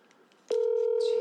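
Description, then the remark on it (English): After a moment of quiet room noise, a loud, steady electronic phone tone abruptly starts and holds without a break as a phone call to a woman is placed and rings out. “Let me see if I can call her and get her to explain it.”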